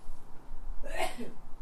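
A single sharp sneeze bursts out partway through, moderately loud, then trails off quickly with no talking.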